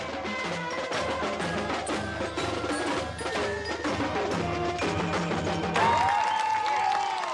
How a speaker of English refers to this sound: The loudest applause this day was for the heroes of the Gulf War, the men and women who proved what everyone knew in their hearts, that Americans and American technology can't be beat, that America is still number one.